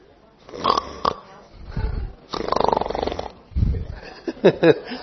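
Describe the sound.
A voice mimics snoring with a few rough, rasping breaths in and out, loud, followed by a couple of snorting sounds.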